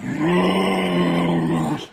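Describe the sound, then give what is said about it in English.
An angry kangaroo gives a single loud, sustained low growl lasting nearly two seconds. It is rough and steady, then cuts off abruptly, with no talking over it. “Okay, let's see if this kangaroo foofs.”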